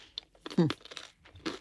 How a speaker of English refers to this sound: Sorry, crunching away.